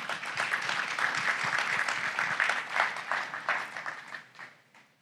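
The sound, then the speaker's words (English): A crowd applauds steadily, with many hands clapping in a dense, bright wash that holds for several seconds and then fades out toward the end, as Steve Johns, CEO of One Cause, is welcomed back to the stage as the next presenter. “Let's give it up for Steve.”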